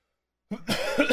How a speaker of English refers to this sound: Man, I hate being sick. I hate coughing and hacking.